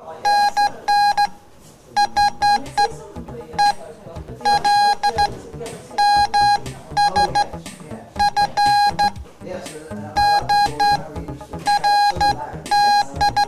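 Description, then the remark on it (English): Morse code beeps sent by a Morse operator: a steady, mid-pitched tone keyed on and off in quick bursts of dots and dashes, arriving in clustered groups with short pauses, while a voice talks underneath. “The final word on the day goes to Morse operator”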